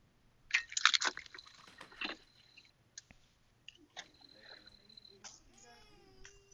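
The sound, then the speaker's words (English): A boy chewing food late in the evening: loud, crunchy bites in quick bursts for the first two seconds, then quieter scattered mouth noises and a brief high-pitched whining voice. “It's too late for him to be eating.”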